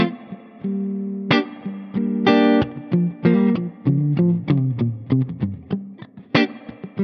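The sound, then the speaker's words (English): An electric guitar, played through a spring reverb on foot switch D and recorded direct into a DAW, plays a run of plucked notes and chords with a washy spring reverb tail ringing after each attack, loud with no voices. “And then I have a spring reverb on foot switch D.”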